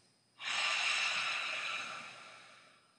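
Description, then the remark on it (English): A slow, deep breath exhaled audibly through the mouth during a guided breathing exercise, loud at first with a hissing rush of air, then gradually tapering off. No talking. “Inhale, exhale.”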